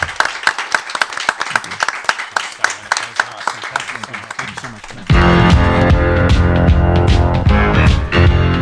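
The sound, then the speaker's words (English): A live studio audience applauds an author after an hour-long book talk on I-94, Lumpin' Radio's books and literature program: a dense, steady patter of many hands clapping for about five seconds, then loud music abruptly takes over and plays to the end. “Please give a big round of applause to our author who went through this hour-long gauntlet.”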